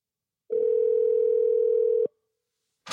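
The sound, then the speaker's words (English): A steady telephone dial tone hums evenly for about a second and a half as a call is placed, then cuts off abruptly, followed by a short silence and a brief burst of noise. “So we're going to get on the phone”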